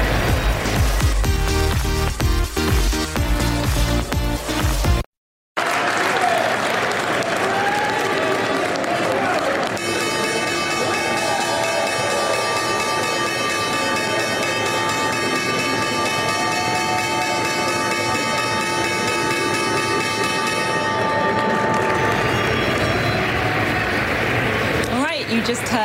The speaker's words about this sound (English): Opening bell ringing there on this Thursday. I'm … coming to you live from the New York Stock Exchange.